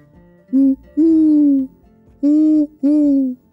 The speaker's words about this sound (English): "Woo-hoo! Woo-hoo!" called the owl.